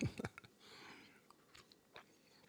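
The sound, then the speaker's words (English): Quiet mouth noises: a few wet clicks, then a soft airy slurp as someone sips hot Sleepytime tea, followed by a faint swallow. No talking. “And hold on, let me take a sip of my Sleepy Time tea.”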